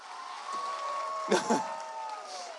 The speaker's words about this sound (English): Thanks for clapping for my 90-year-old grandmother.